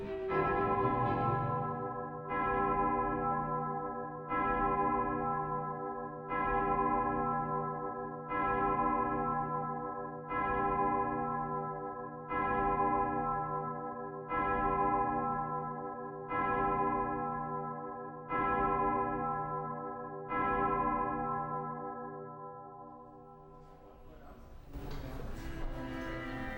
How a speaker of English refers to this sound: is it not strange how everything went so deafeningly quiet when the clock chimed?